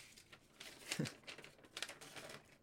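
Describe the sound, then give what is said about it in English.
Paper rustles and crinkles in a few quick, uneven bursts, like sheets being shuffled and handled, with brief quiet gaps between the crisp noises and no talking, as someone gets out a sheet of paper to look up an exact job title. “I got the paper. Hold on. What the exact term is.”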